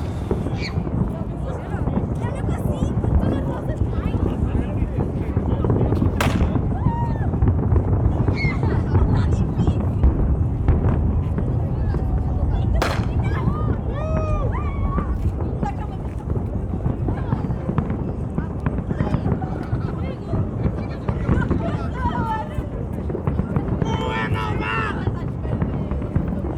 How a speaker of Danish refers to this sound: Og nu kommer der altså fyrværkeri over i Lissabon, kan jeg se. Meget synkront.